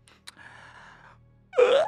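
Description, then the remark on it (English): A woman acts out a wide, big yawn: a long, breathy inhale, a short pause, then a loud voiced sound that rises in pitch and stretches out. “She yawns wide, big.”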